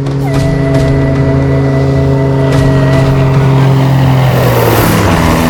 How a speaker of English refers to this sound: But the roar of Samaritan Aviation's float planes brings hope to the nearly 250,000 people living along the 700-mile Sepik River.